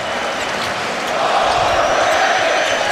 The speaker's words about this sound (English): Crowd starting in with the overrated chants here in game one.